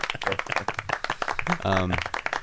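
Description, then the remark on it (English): A light, polite golf clap for the Arizona Cardinals: a quick, steady patter of soft hand claps running throughout, with a voice speaking briefly over the middle. “So a little golf clap for the Arizona Cardinals.”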